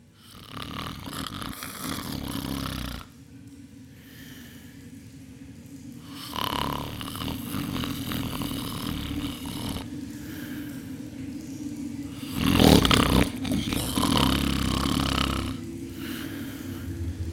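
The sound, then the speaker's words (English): Loud, rumbling snoring rises and falls in slow cycles, each raspy breath lasting a few seconds, with one especially harsh, snorting peak near the end. No one speaks. “Hey! Hey! Wake up!”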